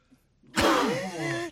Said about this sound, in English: Sorry. Yeah. Massive sneeze there.